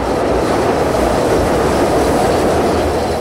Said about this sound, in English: What it's like to live next to the CTA's L train tracks.